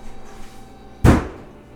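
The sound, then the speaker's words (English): A single hard punch against a refrigerator, a sharp low-heavy impact with a brief rattling decay, following a second of quiet hum. “Yeah, I'm going to punch my fridge before I talk more about Digimon.”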